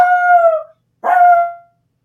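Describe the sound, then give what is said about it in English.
A dog named Tiger lets out two sustained, tonal howls, the first drawn out and wavering, the second shorter after a brief pause, with no talking. “Oh, Tiger does not like that.”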